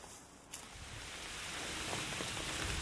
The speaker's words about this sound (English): I just thought I'd share with you us hunkering down under a tree because the rain has started again. I hope it's just a shower because nothing was due for quite a while.